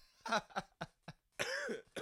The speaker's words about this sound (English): By the way, I have a cough, so if you hear me coughing